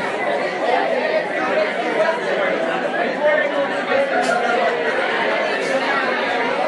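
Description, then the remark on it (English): A dense crowd chatters excitedly, many overlapping voices merging into a loud, steady babble with no single speaker standing out, sustained evenly throughout. “There's no way this crowd is going to be quiet. They're so excited.”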